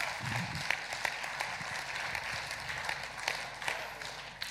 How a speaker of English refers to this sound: You better give him a clap, all right?